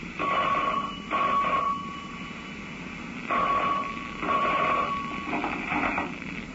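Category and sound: signal or alarm, telephone ringing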